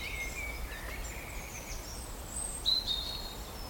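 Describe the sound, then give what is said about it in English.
Thin, high whistled notes from a small songbird drift over a low outdoor rumble, with one brighter, sharper phrase near the end. The singing is fairly faint, with no voices. “It's such a small bird and I really want to see it.”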